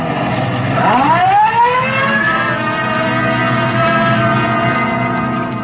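A police car siren winds up from a low growl to a steady, loud wail over a rumbling car engine, holding its high tone as the police car drives off on a Code 3 call with red light and siren.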